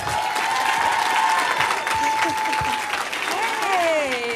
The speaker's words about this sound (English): So that being said, let's give a warm hand of applause for Miss Rashida Jones.